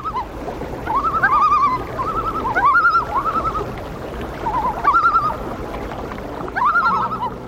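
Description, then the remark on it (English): A loon calls in four wavering, tremolo bursts, each a quick rising-and-falling warble, with brief pauses between them over a steady low background hum. “Darkness falls upon us now, and all the things that I have broken, all the love I've left unspoken, echo in the loon's libretto. Hoo-ha-ha, hoo-ha-ha, hoo-ha-hee.”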